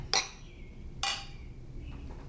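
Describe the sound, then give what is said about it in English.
Glasses clink together twice in a toast, about a second apart, each strike bright and ringing briefly before fading. The clinks are clear over quiet background tone, with no talking. “Cheers. As loud as possible. As loud as possible, yeah. Cheers. Cheers to everybody.”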